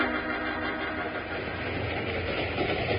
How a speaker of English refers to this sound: So when the train began to near Broken Wheel Grade, he called for the next move.